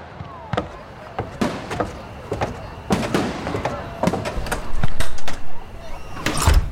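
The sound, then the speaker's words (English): Fireworks burst over Boston, setting fires, in a rapid, irregular string of sharp cracks and bangs, some loud, with a crackling wash behind them and voices faintly audible in the background. “Order the troops to put out the fires, confiscate the fireworks, close the taverns, and find that criminal Franklin.”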